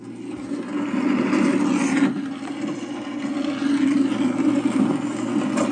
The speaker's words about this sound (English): Your mom quickly gets you in the car and starts it. The engine starts and then finally starts as you guys start driving down the rain-filled road.